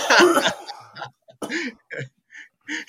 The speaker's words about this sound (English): I love that you're coughing right there, and then you have to use like a beer as though it was a water. To wet your throat.